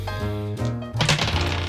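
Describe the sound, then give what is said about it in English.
A brief burst of hard little clacks and rattles as two dice are rolled across a table for a power roll in a game, over a low sustained musical tone, with no one speaking. “I was going to say, can you do a power roll for me? I can. Let me find my dice.”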